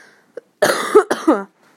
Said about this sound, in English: Warning, I am a little sick, so I will cough in this video.